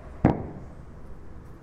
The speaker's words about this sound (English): Firework.